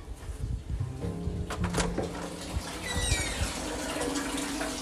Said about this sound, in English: Hold on, y'all. I'm running a bubble bath while I'm doing this shit, so bear with me. I gotta go check the water. I don't want the tub to overflow.